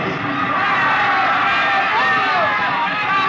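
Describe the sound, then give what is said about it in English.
A large fiesta crowd in a plaza in Mexico on a spring night yells and cheers for a papier-mâché bull in a dense, continuous roar of overlapping voices, loud, with no single voice standing out across the few seconds. “Mr. and Mrs. William Travis stood on the edge of the yelling crowd, smiling.”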